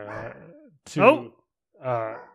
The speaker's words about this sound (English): We have Colby Jack Cheese here, the dog, and he's barking.